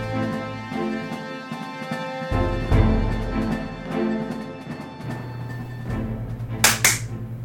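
Two sharp hand claps land in quick succession near the end, the second just after the first, over a steady musical backing with sustained tones and light ticking beats.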